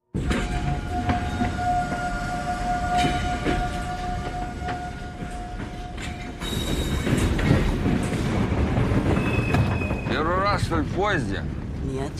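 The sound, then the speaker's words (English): A train to Murmansk in the Arctic Circle rumbles steadily along the tracks with a constant low roar and faint rattling, growing slightly louder midway before metal wheels squeal in rising, wavering tones near the end. “On the train, at least there's one bit of good news.”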